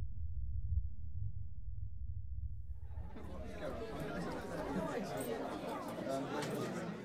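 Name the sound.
crowd chatter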